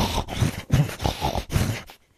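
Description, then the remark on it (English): A voice imitates the snorting of a dog with sleep apnea at 12:45 at night in a dark room: a run of four or five rough, throaty snorts and grunts in an uneven rhythm, fairly loud, followed by a brief quiet stretch. “He fucking has sleep apnea, dude.”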